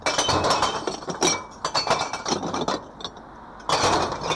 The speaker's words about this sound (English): crew empty another box of bottles and newspapers into the truck.